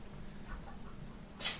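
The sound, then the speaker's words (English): A single short, sharp sneeze bursts out near the end, hissy and high-pitched, after a stretch of quiet low background hum with no talking. “Bless you.”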